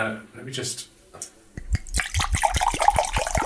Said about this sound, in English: There, look at that ruby deliciousness pouring out there. Hang on. It looks like Ribena. It does look like Ribena, but I fancy it will have more of a kick.